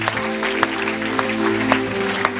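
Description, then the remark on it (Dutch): An audience applauds steadily to give Jesus a hand, a dense wash of many hands clapping with a few sharper claps standing out, over a low sustained hum of music underneath. “Come on, let's give Jesus a hand.”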